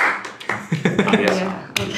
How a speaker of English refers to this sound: I'll clap for myself.